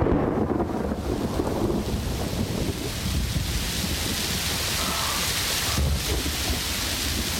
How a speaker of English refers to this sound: It was the worst we'd seen. Violent storms tore the air, flattened the undergrowth of the barranca, and grew stronger every day.